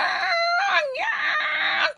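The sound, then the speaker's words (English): A voice imitates a baby warthog's wailing scream: one loud, sustained high-pitched wail lasting about two seconds, bending downward then rising again before cutting off. “And the way that these warthogs would scream, it was the wail. They would wail.”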